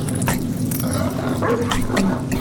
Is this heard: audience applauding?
no